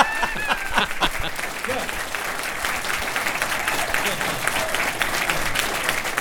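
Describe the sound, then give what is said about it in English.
A crowd at a panel event bursts into its first sustained applause, dense and steady clapping that fills the whole clip at an even, fairly loud level, with a few brief voices and whoops mixed in at the start. “I was worried I'd have to say more before I got that first applause.”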